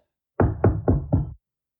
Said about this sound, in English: Uh-oh. Did it knock at the door? Actually, sorry, it's more like this.